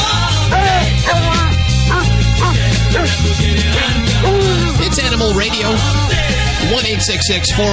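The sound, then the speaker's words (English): Five dogs bark and howl in a musical, sing-song way, loud, with a voice speaking briefly over the yips and yowls. “with the singing five stair-step dogs.”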